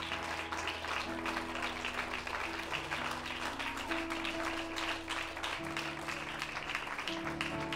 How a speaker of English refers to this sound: Why don't you stand and clap your hands unto the Lord?